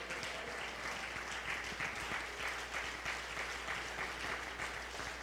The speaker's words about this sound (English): Oh, if you believe that, I wish you'd stand to your feet and clap your hands and say, there is a why.